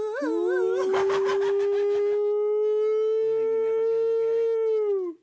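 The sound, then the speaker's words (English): A dog howls in one long, sustained, wavering note, pitch sliding like it's singing, with lower tones and rhythmic sounds joining underneath before the howl trails off. “Sounds like a dog.”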